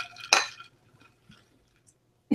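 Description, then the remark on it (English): Mason jar glasses clink together once in a toast, the bright ring fading quickly into near silence before a faint bump at the very end. No one speaks. “I'll toast you with my mason jar glass.”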